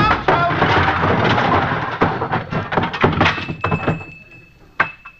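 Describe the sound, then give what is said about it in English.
A closet door swings open and a loud avalanche of objects tumbles out, clattering and banging for several seconds, thinning out before one last thump and a small tinkling bell. “Costello, you're going in the wrong door. That's a closet.”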